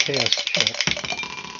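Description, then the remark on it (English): A short burst of voice gives way to a rapid, irregular clatter of dice rolled across a table for a sighting check in a hex-map wargame, fading out over about a second. The roll comes up snake eyes. “No, snake eyes.”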